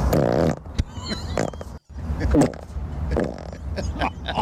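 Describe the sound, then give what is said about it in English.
Loud, wet, low-pitched farts rumble in a drawn-out series of four bursts, broken by one brief pause, with no talking over them. “That first fart sounded like it weighed 4 or 5 pounds.”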